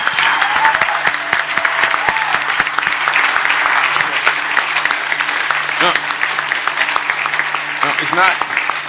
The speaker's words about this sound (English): Wow, this is so phenomenal. This is so much bigger than anything I could have expected. This is, this is worth, so give him another round of applause. My goodness, praise God.